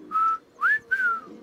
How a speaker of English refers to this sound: The olive-sided flycatcher has one of the most distinctive and catchy songs on the continent. And many birders learn early on to pick out its sharply inflected three-note song and to imitate it.